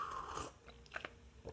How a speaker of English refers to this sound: It's morning, as you can hear by that sip of coffee.